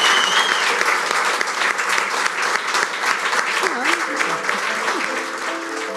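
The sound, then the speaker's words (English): Sustained applause from an audience for the panellists at a Wheeler Centre event in Melbourne, a dense steady patter of many hands clapping for six seconds, with faint voices and a brief cheer or call mixed in beneath. “So if we could just give our panellists a big round of applause.”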